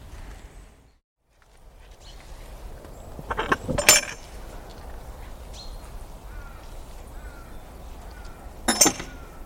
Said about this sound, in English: The sound of a gate echoing through a still woodland. I've come out on the most glorious of January mornings. Deep in the heart of Monmouthshire.